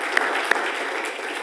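A church audience applauding in praise of the Lord: dense, steady clapping from many hands. A couple of sharper individual claps pop out near the start, and no one speaks over it.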